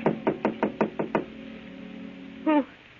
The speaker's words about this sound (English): Then on the next night, a knock at Gloria's apartment door.